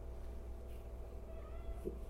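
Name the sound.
cat meowing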